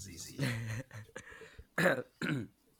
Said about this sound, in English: Yeah, sorry, clear your throat.